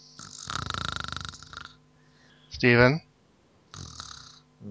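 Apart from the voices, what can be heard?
snoring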